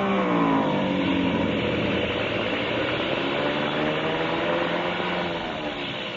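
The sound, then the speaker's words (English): A loud airplane engine drones steadily, its pitch wavering slightly as the plane comes in fast to land with its engine acting up, then easing off a little toward the end. No voices are heard. “Engine been acting up.”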